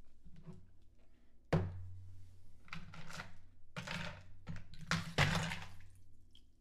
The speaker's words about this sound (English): We're going to go ahead and dump the ice and water from the rocks glass.